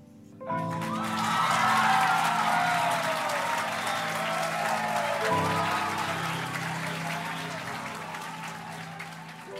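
A crowd applauds, a dense, steady wash of many hands clapping that swells in the first second and stays loud throughout, with a low humming murmur beneath.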